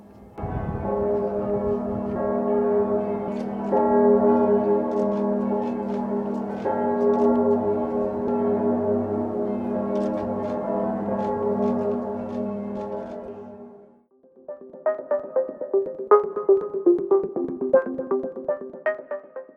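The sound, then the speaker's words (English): Bells of big churches in Paris and across France ring all together at 3 p.m. in a dense, overlapping peal with a deep sustained hum, then give way to a quicker, brighter run of clanging strikes. No one speaks. “A number of big churches in Paris and across France honored the fallen victims by ringing their bells all together at 3 p.m.”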